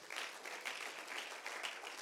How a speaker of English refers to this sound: Someone say amen. Why don't you just clap hands to the Lord for a moment?